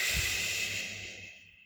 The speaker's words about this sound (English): So that is to bring yourself up, to bring yourself down from excitement and anxiety and worrying and feeling too stressed. Two short breath in, one long breath out.